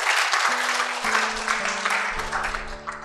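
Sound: audience clapping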